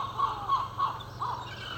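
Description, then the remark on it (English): A seagull calls out in a series of about four short, harsh, mid-pitched cries, evenly spaced, over a steady low background hum. “And if any of you speak seagull or dog, which I imagine he's actually saying shut up, yeah, let me know what they're saying.”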